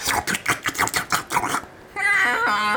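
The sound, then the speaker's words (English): A cat grumbles in a quick run of short, rough pulses, then lets out a sustained, wavering meow. No one speaks. “The cat harumphed.”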